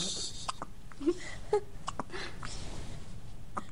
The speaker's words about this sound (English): Goodness. That was like a 1 hour old baby hiccuping, apparently. I didn't know what we were listening to.